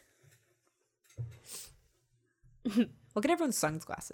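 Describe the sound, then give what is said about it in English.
A single quick sneeze bursts out, a short voiced catch and then a sharp breathy hiss, after a near-silent pause, before a person starts talking. “Ugh, I'd rather not. Bless you.”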